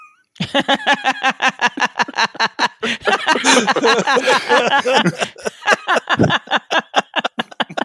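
A human voice imitates a cat, letting out a rapid string of loud, strained meows and yowls, with a denser warbling stretch in the middle before short repeated cries resume.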